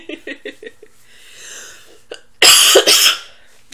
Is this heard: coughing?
yes